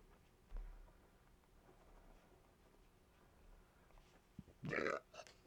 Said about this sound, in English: Ugh, I'm burping. It's happening. I'm sorry. I got this feeling out of me. I didn't even eat anything weird.